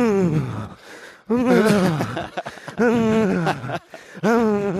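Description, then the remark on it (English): A man vocally imitates the loud, heavy panting of a runner, with several strained, groaning breaths in a rough rhythm, each voiced exhale sliding downward, fairly loud. “There is that genre of runner whose breathing is so annoying you have to either slow down or speed up radically.”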